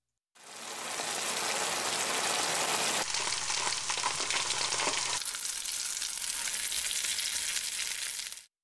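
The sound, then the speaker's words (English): Bacon frying, held next to a microphone, a dense, steady crackling sizzle that sounds almost like heavy rain, shifting slightly in tone partway through, with no voices. “You might have guessed that you were hearing rain, but what you're actually hearing is the sound of frying bacon being held next to a microphone.”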